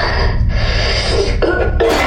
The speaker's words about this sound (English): Oh, what was that? Oh, that's not... I don't know what that is. I coughed out smoke.